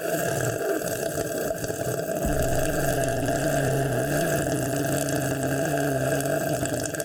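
Someone sips warm squash in a studio, with wet slurping and gulping that runs on without a break, over a steady low hum that sets in partway through. No one speaks.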